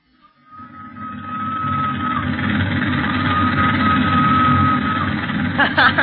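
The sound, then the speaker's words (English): The whistle of the steam train from Matadi to Leopoldville holds a thin, reedy, steady pitch for several seconds over a loud, continuous engine rumble, with a few sharp clanks near the end. “If that doesn't sound like a peanut whistle, nothing ever did.”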